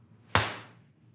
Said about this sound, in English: Give me a clap,